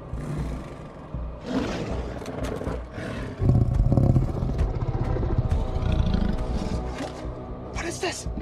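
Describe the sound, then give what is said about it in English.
A zombie tiger in Las Vegas in a film roars and snarls, a loud, rough, guttural growl that swells and rumbles on for several seconds with heavy low-end grit. “That's a goddamn zombie tiger.”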